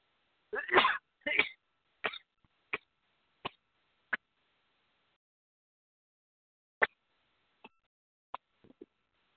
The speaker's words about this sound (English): I was overwhelmed with the need to sneeze, and I had to do it. I tried to get away from my microphone. I hope you didn't hear that, but I apologize for the delay.